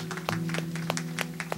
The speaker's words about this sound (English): Lord a round of applause.